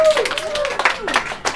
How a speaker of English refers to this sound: Well, listen, I want to really thank you all. Let's hear one more round of applause.